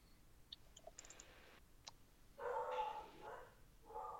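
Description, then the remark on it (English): Several of the speaker's dogs bark in the background as it starts to get dark, a loose cluster of overlapping barks and yips with a few sharp clicks earlier on, fairly faint and with no one speaking. “You hear dogs barking in the back, you know, because it's starting to get dark.”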